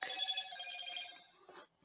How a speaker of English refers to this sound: That is like the best phone ditty I've heard.